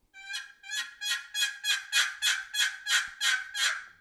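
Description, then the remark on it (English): A plain turkey yelp played on a game call: about ten raspy, evenly spaced notes in a slow, steady rhythm, each fairly loud and the same pitch, with no talking. “It's 3 to 7 notes, but it's more about the rhythm. And it's just a slow rhythm.”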